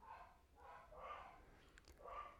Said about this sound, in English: You know, you're hearing my dogs downstairs, or, you know, you probably, I can't control them.